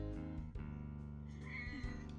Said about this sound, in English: Why is this cat getting so close to me?